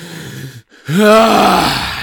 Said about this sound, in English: How's that? We're going to have to fix that audio blowout in post.